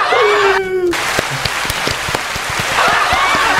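A round of applause: dense, steady clapping from a small group lasting several seconds, opened by a short falling whoop, with excited cheering voices rising again near the end.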